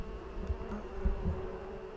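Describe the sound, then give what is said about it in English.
A steady, muffled hum of many indoor bees buzzing continuously behind glass, sounding slightly dulled, with occasional low thumps and no voices. “Maybe you can hear them buzzing through the glass.”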